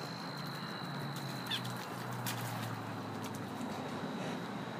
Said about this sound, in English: I kind of was standing still for a minute here, looking at the little pond. Let's see if I can get a little frog to make noise again.